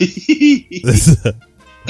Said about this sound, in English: But then you could tell when I stopped eating it, because that's when the coughing just took over.